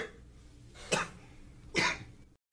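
A father in a film scene gives two short, stifled coughs about a second apart, moderately loud, faking a cough to hide a smirk and laughter, with faint background hiss and no talking.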